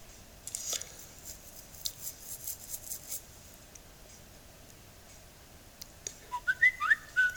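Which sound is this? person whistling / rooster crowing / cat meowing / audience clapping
person whistling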